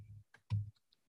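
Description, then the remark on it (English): A few computer keyboard arrow keys are pressed to move a character, giving two solid clacks with a low thump followed by a couple of lighter, faint taps in otherwise quiet surroundings. “Just hit your arrow keys.”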